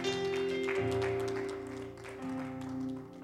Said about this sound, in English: Clap those hands for those who receive the Lord's word.